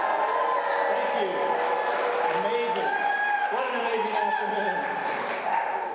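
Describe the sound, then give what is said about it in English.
A large rally crowd cheers and whoops for a speaker's phone as he takes a selfie, a loud, continuous roar, many voices rising and falling together for several seconds without a break. “Why don't you cheer for my phone for this phone?”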